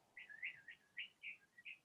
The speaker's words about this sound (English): The same even as the vibrations and the sound of that bird.